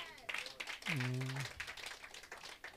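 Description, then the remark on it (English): A church audience claps steadily to appreciate God, a dense, rattling wash of applause, with voices calling out over it and one sustained, sung-like cry rising briefly in the middle. “The way you've clapped, I hope you come.”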